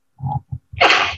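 A single loud sneeze: a couple of short, breathy build-up catches followed by an explosive, hissing burst that fades quickly. No talking.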